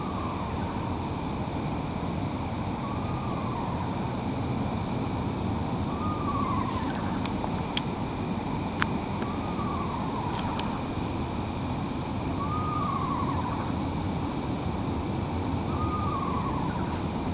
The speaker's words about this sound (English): This is what I mean by being a bird that can really sing quietly if it needs to. Pretty sure this bird is straight above me.